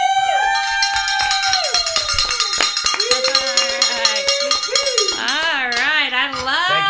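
A hand bell rings with rapid, repeated clanging strikes and a bright, ringing metallic tone, loud throughout; near the end people whoop and cheer over the ringing.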